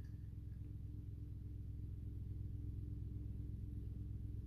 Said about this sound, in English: You hear a helicopter?